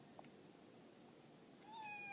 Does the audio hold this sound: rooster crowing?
no